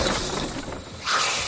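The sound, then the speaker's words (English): A big crash as something big crashes through a school building, with a rush of noisy, shattering debris and rumble. It swells louder again near the end, with no voices. “Our Mama Jamma spied as something big crashed through the school that she lived right beside.”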